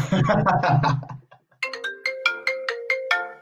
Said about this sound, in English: Oh my god, I can't answer that right now, sir. I got a phone call. Phone off in the studio. I'm sorry.